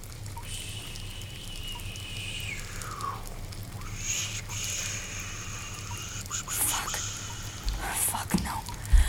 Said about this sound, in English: So we're standing in an apartment with... Yep. The water's still running. It's kind of soothing, actually.